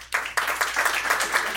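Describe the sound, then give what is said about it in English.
An audience breaks into applause as a vote, a dense, steady wash of many hands clapping that starts abruptly and holds at an even level for about a second and a half, with no voices over it. “All right, we're gonna vote for just a round of applause.”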